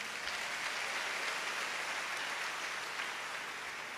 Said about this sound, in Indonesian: Tepuk tangan yang meriah.